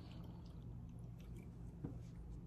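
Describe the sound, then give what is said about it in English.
Quiet sipping of Coors Light beer that was left open overnight, with soft wet mouth sounds and a small gulp near the end over a low steady hum. No one speaks. “Two sips, I can't talk.”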